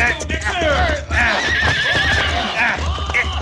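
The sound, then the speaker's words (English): A horse with a rider on it whinnies loudly, letting out several shrill, wavering neighs in quick succession against a dense, noisy background of commotion. “All right, come down off that horse, fella.”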